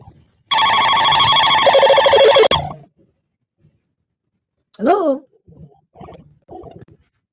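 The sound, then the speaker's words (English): A telephone rings loudly for an incoming call in one bright, buzzy burst lasting about two seconds, followed by quiet pause and then a few short snatches of voice. “Yeah, let's take we might be able to get one or two more phone calls in.”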